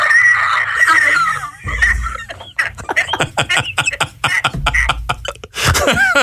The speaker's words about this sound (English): I have a smoker's cough, although I haven't smoked for over 30 years. It's a sort of wheeze. I'll do it now.